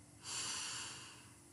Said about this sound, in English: Now close your eyes. And we're going to do six breaths all together. Here it goes. Get comfy. Don't move a muscle. Here we go. Breathing in. And out. Breathing in.